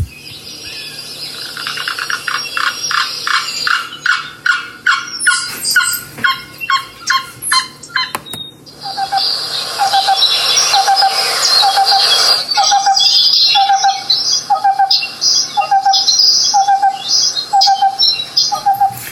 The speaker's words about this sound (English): it kind of reminds me of when the cicadas start calling in the summer, the cuckoos also start calling. Yeah. Let's take a listen here to some of the song and calls of the black-billed cuckoo.